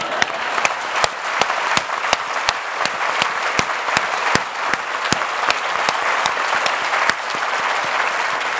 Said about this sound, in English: I'd like you, before we just move on to the end piece, to give a special round of applause to the signer,